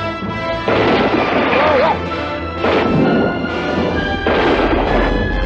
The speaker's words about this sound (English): Smile, you son of a bitch. Bang. And blows the shark up.